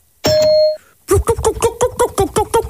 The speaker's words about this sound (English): And what you're going to hear is a ding to signify the start of the 20 seconds